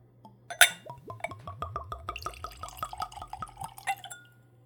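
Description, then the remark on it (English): Whiskey glugs steadily from a bottle into a clean, tulip-shaped Glencairn whiskey nosing glass, a rapid series of rising gurgles after a sharp clink at the start, ending with another light glass tap. Clear, no voices. “So let's go for a pour.”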